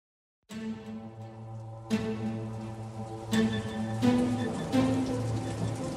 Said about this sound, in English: In the summer of 2015, record rains coursed down the parched embankment at Palmdale's Park and Ride, made rivulets through the place Michelle O'Keefe was murdered, and past the empty spot where once a memorial cross marked her passing.